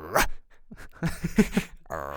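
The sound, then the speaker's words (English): A male dog barks several times in quick, uneven bursts: one sharp yelp, a cluster of short yips, then a longer whining bark at the end, clear with no talking. “Oh, he's barking.”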